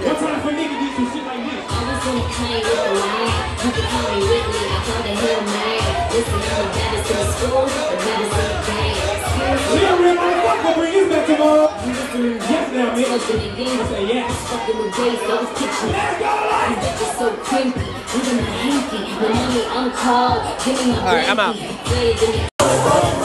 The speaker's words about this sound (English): Alright, so I had to go back live again because they done started strolling in this motherfucker. I hope y'all hear the stomp. I hope y'all hear these niggas strolling. It's niggas strolling.